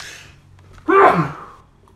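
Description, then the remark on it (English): A single loud sneeze bursts out abruptly after a faint breathy inhale, then trails off quickly into quiet. No talking. “I almost broke my neck sneezing.”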